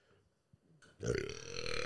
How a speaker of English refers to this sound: Man, I'm burping like a motherfucker today. It's all Straight that up. Fucking protein I had, baby.